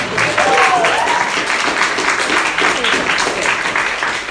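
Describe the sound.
An audience applauds the speaker's wife steadily for several seconds, a dense wash of many hands clapping at a fairly loud, even level, with a few faint voices and cheers mixed in early on.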